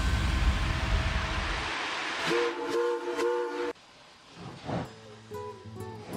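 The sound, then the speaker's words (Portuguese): A train rumbles loudly along the rails, then a horn sounds in a few drawn-out blasts with harmonic tones, echoing as the rumble fades to a quieter clatter. “O surgimento dos trens foi um dos principais marcos da Revolução Industrial.”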